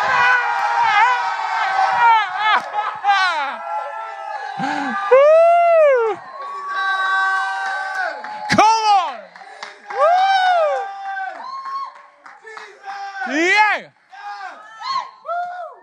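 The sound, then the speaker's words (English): A loud crowd screams and cheers together on cue, many overlapping high-pitched shrieks and whoops rising and falling in waves for about sixteen seconds, sustained. “Now scream.”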